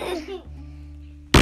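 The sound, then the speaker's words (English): A brief high-pitched vocal sound gives way to a low, steady, droning burp lasting about a second, followed by a sudden loud, noisy burst at the very end. “Ooh, burp. Excuse you.”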